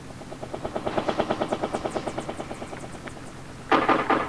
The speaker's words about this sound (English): No, in a helicopter!